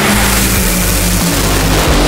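Two nitro funny cars race down a drag strip in the final round of Nitro Funny Car in Houston, a loud, continuous blast of deep rumbling engine power with a brief dip partway through and no voices; the winning run took 3.941 seconds at 310 miles an hour.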